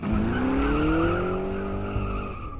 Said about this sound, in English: And then I was gone. Just like that. My rental car couldn't have peeled out of there fast enough.